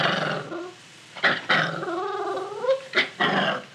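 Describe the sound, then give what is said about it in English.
A puppy growls in a low, rumbling snarl as a new collar and leash are put on her, broken by a few sharper yelping bursts and whiny rising tones, with no talking. “Apparently, walking beside her lord and master didn't mean a thing to the dog.”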